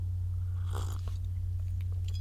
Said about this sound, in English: As I take a sip of coffee there. Hopefully that sounded like ASMR and not disgusting, although I'm sure it sounded disgusting.